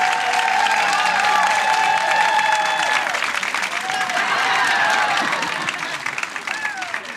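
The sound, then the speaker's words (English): A large audience claps steadily for several seconds as they welcome meditation teacher Michael Beckwith onto the stage. The applause is dense and sustained, with scattered whoops and whistles rising above it before it begins to taper off. “Please join me in welcoming onto the stage Michael Beckwith.”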